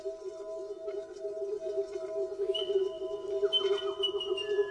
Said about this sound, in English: It's the resonance. The thing about the calls of South Island Kokako, unlike any other bird call I've heard in the world, is they seem to be able to produce a natural resonance.